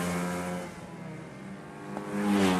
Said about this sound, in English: The finals of the 2012 Irish Go-Karting Championship. Go-karts. They're toy-sized racing cars, about 6 feet long by 4.5 feet wide,